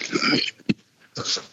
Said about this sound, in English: Because, you heard that cough. He is very stuffy, very congested.